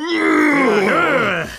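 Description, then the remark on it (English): A pregnant woman in her third trimester lets out one long, loud groan with no words, starting fairly high and sliding downward in pitch with a slight waver before trailing off. “Just normal pregnant woman noise.”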